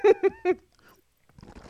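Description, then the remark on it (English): Three loud gurgling bursts of bubbles blown into a cup of green tea come in quick succession, followed by faint bubbling and then a voice starting to talk. “Stop blowing bubbles on my couch.”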